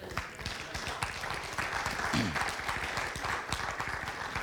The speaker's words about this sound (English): I was going to pray, but you all wanted to clap. We'll just go with the clap.